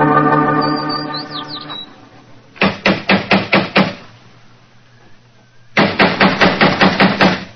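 Someone raps on a door in two loud, rapid bursts, about seven knocks, a pause, then about nine more. A steady buzzing tone plays briefly before the first knocks. No one speaks.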